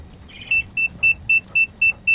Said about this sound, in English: Okay, let's have a look. It's beeping, which means it's telling me that it's at a dangerous level. And that's what the signal's saying inside my mask. So the level reads, there's 9,900 and something parts per million.